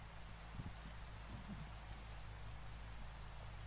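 Steady, soft rain falls without pause, a continuous even hiss with a faint low hum beneath it and no voices or other distinct sounds.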